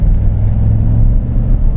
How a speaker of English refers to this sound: So the first thing I notice with the gas truck is that the initial throttle response is quicker than the diesel, okay? And that's common in a gas vehicle. All you have to do is open the throttle blade and the air is right there.